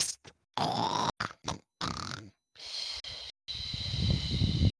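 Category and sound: vocal imitation, voice imitating snoring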